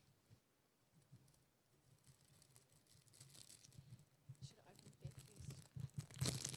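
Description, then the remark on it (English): Rustling and crinkling of a prop being handled, like a crumpled wrapper or bag. Irregular crackles start soft and grow steadily louder and busier, ending in a sharp burst of crinkles. “Sorry guys, rustling, sorry about this.”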